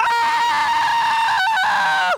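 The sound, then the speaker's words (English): A person lets out a long, loud, exaggerated scream, sustained and slightly wavering for about two seconds with a brief break near the end before it cuts off, sounding almost like a crowing rooster. “No, you would just scream.”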